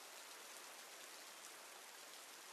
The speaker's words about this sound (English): The dugout along the third base line is the closest, and we duck in, the overhang barely keeping us from the rain that pelts the roof.